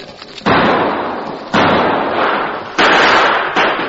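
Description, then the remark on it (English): Several loud gunshots from a double-barrelled shotgun and revolvers ring out one after another as men fire into sleeping, blanket-wrapped figures, each a sharp blast with a long, roaring decay that runs into the next, forceful with no talking. “The killers rushed forward, pouring deadly gunfire into the blanket-wrapped figures.”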